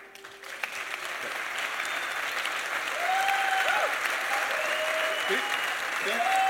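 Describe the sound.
An audience applauds in a dense, steady wash of clapping that swells slightly and holds for several seconds, with a few faint voices calling out underneath.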